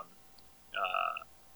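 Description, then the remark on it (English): A phone's low-battery alert: one short electronic tone lasting about half a second, mid-pitched with bright ringing overtones, sounding alone over faint background hiss. “I just got a low battery on my phone here.”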